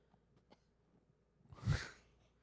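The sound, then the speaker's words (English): A single soft, stifled cough bursts out after a moment of near silence, brief and breathy with a quick rise and fade, sounding muffled and held back rather than forceful. “The wimpiest cough.”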